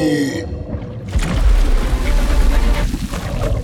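Heavy water splashing and sloshing as someone hauls himself out of the water, rising after a brief quieter moment and churning loudly for several seconds.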